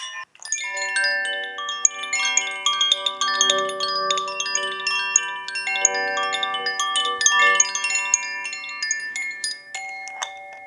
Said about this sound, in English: Oh my god, Jellybean loves the chimes. Jellybean! I play chimes for Jellybean every day.